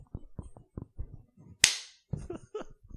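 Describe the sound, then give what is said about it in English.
A single sharp, loud hand clap with a brief ringing tail, preceded by a series of soft low thumps and followed by faint rustling and murmuring sounds. “I started this page over. Clap.”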